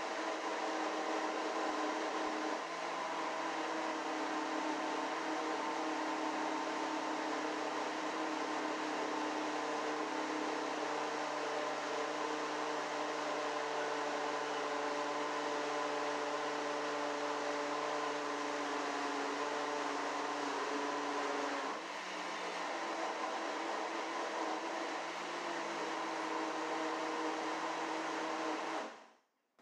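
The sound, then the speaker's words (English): A blender blends a kale and blueberry smoothie, running continuously for about half a minute, a loud steady motor roar with a whining hum that shifts pitch slightly a couple of times before cutting off abruptly. “But my blender's made the smoothie, so, oh boy.”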